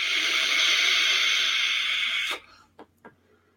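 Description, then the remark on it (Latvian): A long, steady puff drawn from a vape mod set to 35 watts, a loud airy hiss lasting about two seconds that cuts off sharply, followed by two brief soft ticks in near silence. “Tvaika apjoms palēnās, garšalo projām ir super, tvaiks manām tāds siltāks”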